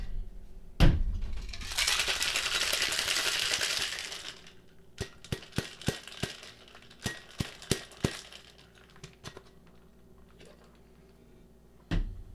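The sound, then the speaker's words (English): A sharp clack, then about two seconds of dense, hissing rattle as ice is shaken hard in a cocktail shaker, followed by a scatter of crisp clinks and taps; no one speaks. “Now we're going to give her the shake.”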